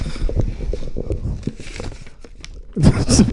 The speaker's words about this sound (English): Okay, let's see what's in this bag. Wow, it's a lot of crinkly things.